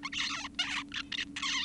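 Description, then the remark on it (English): An adolescent male zebra finch sings four raspy, buzzy syllables in quick succession, each a burst of nasal, harmonic-rich notes separated by brief gaps, over a faint steady low hum. “Here's a male zebra finch's song as it goes from a wee little bird to an adult.”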